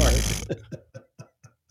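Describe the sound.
Someone makes a fart noise with their mouth: a loud, buzzy raspberry lasting about half a second, then five short sputtering puffs at a steady rhythm that trail off quieter.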